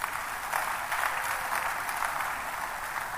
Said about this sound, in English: Somebody clap for yourself.